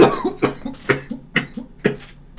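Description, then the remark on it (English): A loud fit of coughing: about five harsh, raspy coughs in a quick, steady rhythm, with short wheezy breaths between them and no talking. “First of all, how dare you cough on my audio?”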